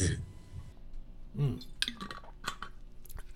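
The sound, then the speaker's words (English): Someone takes a drink: a few soft sips and swallows, with light clinks of a glass or cup and small wet mouth noises, fairly quiet with no talking. “I'm going to take a drink.”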